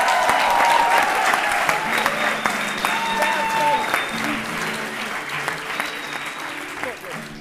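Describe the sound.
A crowd applauds steadily for several seconds, dense rapid clapping that starts loud and gradually thins and softens, with faint voices and a few cheers mixed in.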